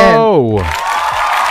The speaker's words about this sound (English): Man, all this cheering today, man.